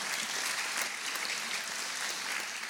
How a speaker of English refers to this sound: I'm glad that wasn't a real loud applause because when I called him tonight and told him, I said, Barry, they didn't even remember you.